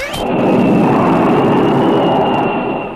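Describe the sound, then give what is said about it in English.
A loud, steady jet engine roar fills the whole stretch, a dense rumbling rush topped by a thin high whine, unbroken with no voices. “Flight leader to ideal fighter jet, clear for takeoff.”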